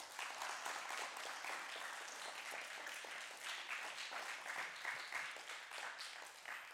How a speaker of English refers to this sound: Yeah, go ahead and clap your hands.